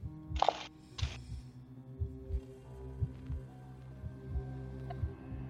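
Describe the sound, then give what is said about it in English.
Two quick bursts of real dice rattling and clacking early on as they are rolled for a Perception roll, followed by a steady, low, heartbeat-like thumping pulse that continues underneath with no talking. “You guys hear all my click clack rocks?”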